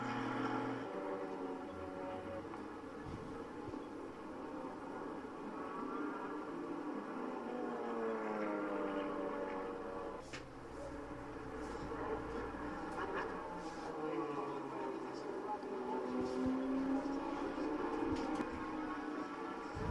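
The race leader's car, driven by TJ Aker, approaches through the esses, its steady loud engine drone rising and falling in pitch as it shifts and revs through the bends, with a faint murmur of background voices.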